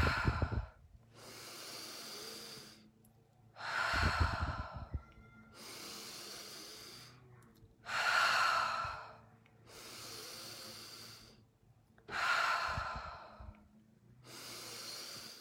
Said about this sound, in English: So let's go. Breathing in, much slower this time, breathing in through the nose, out through the mouth.